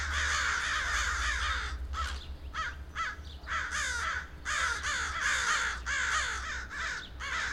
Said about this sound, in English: High above them, they heard the rough call of crows, probably landing on the churchyard maple trees.